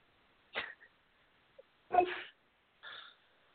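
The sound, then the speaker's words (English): A dog gives three short, sharp barks spaced about a second apart, moderately loud, with quiet pauses between them and no talking. “Hey, the dog's saying hi.”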